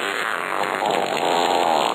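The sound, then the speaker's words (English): A long, forceful fart rasps on steadily for about two seconds, loud, with no pauses and no voices. “that look in your partner's eyes that plainly states both the concept of, holy puckers, did that guy just fart?”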